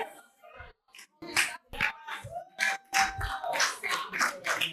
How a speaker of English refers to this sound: Oh, I didn't ask you to clap, but if you want to clap, can you make it authentic?